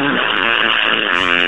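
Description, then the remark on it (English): A long, loud, dry fart, one sustained buzzy blast lasting about a second and a half at steady volume, heard alone. “This one was like obviously dry, but long, big, and just loud.”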